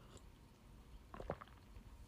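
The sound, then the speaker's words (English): A single quick, soft slurping sip of tea, over an otherwise quiet background with no talking. “I'm sipping some tea.”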